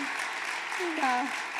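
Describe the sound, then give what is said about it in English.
A round of applause from a crowd for a woman on stage, a dense, steady wash of clapping at moderate loudness, with a voice whooping or calling out briefly partway through. “Like, give her a round of applause.”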